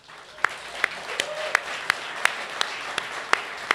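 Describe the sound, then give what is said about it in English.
Steady, evenly spaced hand claps, about ten sharp slaps in a row at a moderate pace, standing out clearly over a soft background hiss with no talking. “By the way, I'm clapping because this is a man that has lived my dream.”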